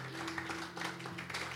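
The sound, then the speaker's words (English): An audience gives God a clap offering after a prayer during a sermon, a dense, steady wash of many hands clapping at once that runs through the whole short stretch at a fairly soft level over a low, constant hum. “Give God a clap offering tonight.”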